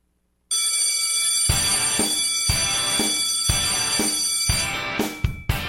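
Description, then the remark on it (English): A bell marking 4:20 in the Pacific time zone rings steadily with a bright, shimmering high tone, struck again and again in a regular rhythm, each strike adding a low thump. It is loud and sounds alone, with no voices. “Every now and then it's a bell rather than a horn.”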